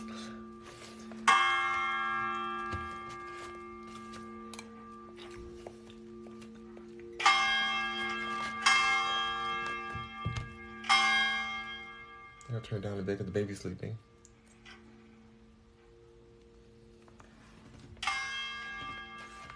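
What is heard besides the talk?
church bells ringing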